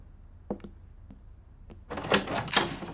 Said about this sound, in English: I'll get the door.